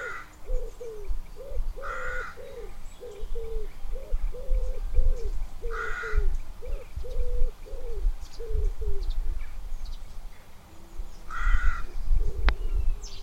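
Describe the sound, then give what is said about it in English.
Birds call outdoors: a steady run of low, repeated cooing notes, broken every few seconds by short bursts of harsher cawing, over a low rumble of wind. “And other than that, the only sounds were of sheep, birds, wind, etc. So no sirens, no helicopters, no angle grinders.”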